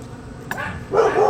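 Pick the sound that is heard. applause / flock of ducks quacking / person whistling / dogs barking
dogs barking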